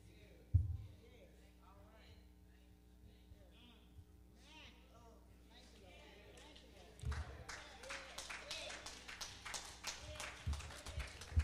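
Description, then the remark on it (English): After a stretch of a man preaching, four people start clapping for God rescuing them from bad relationships, a scattered, irregular patter of sharp claps that continues steadily for the last several seconds at moderate loudness. “I thank all four of y'all that clapped for God rescuing you out of some bad relationships, from some bad people, from some health issues, from some bad people in your life.”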